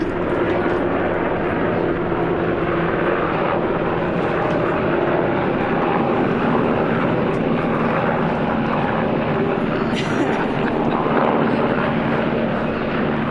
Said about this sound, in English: This one is a military helicopter. Passover for me. Two military helicopters. Three military helicopters.